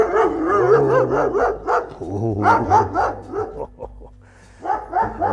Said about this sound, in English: Now we're going to walk past the house where the big Alsatian, as they call them around here, or German Shepherds, as they call them in America, lives. Probably going to get barked at. Oh, yes, there he is.